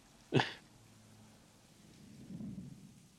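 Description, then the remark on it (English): Heavy rain hisses steadily while a sharp thunderclap cracks near the start, followed later by a softer, low rolling rumble. No one speaks. “So how are the cars so dirty with this much rain?”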